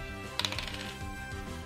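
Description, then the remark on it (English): A quick burst of hard little clicks and rattles as dice tumble across a table and land on 14, fairly crisp, settling within a second over a steady musical backdrop. “14 on the dice, so it's not going to flinch, but 14 plus 4, 18 to hit.”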